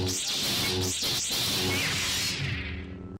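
A buzzing, electric lightsaber hum runs throughout, with two quick swooshing swings near the start, loud, fading out at the end with no talking.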